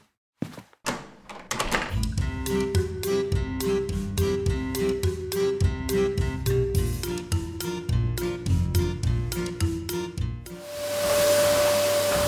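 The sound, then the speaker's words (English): A Hoover vacuum cleaner drones amid a fast series of repeated knocking thumps, then settles into a loud, steady roaring whine near the end. No one speaks. “O'Hare, please, the Hoover. Bernie, turn that bloody thing off.”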